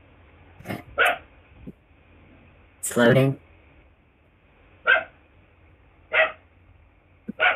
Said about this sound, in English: The dog sounds unhappy.